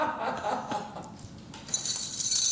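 Keys shaken in a bright, continuous metallic jingle that starts partway through and keeps going to the end, after a brief stretch of soft murmuring and light chuckling.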